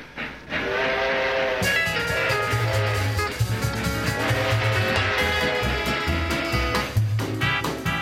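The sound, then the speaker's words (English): The 20th Century Limited passenger express train, on its daily run between New York and Chicago, rumbles steadily along the tracks while a long, multi-tone whistle blares loudly, fading and returning, with heavy low clatter underneath and no voices. “If you were looking to ride in style in 1949, you couldn't do better than the swanky 20th century limited express train that made a daily run between New York and Chicago.”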